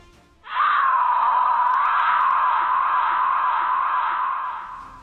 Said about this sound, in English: you hear a shrill yell that tears at your soul. Where does it come from? You hear it clearly coming from the north, across that chasm.